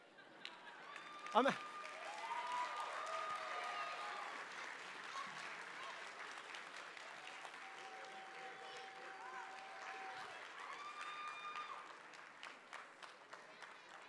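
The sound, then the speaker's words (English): A church audience on Easter morning claps steadily for the full length, giving the children a hand, a dense wash of hand claps with scattered cheers and whoops rising over it, tapering to thinner clapping near the end. “If you got worn out clapping, imagine our children's volunteers this morning with them running all over the property for the Easter egg hunt.”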